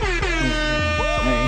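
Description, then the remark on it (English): A loud, sustained air horn blares, its harsh brassy tone pulsing and wavering through a few short bursts without a break, with no voices underneath. “Let me use air horn.”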